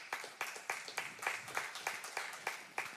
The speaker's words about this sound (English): Thank you for the clap. At least I'm encouraged. After hours of preparation, you can get a clap.